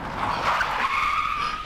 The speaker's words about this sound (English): Ryan slammed the brakes of the car and pulled over to the side of the road.